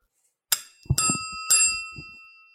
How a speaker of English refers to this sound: The lid. Can you guys hear that? This is the lid of this tequila. You can ring the bell.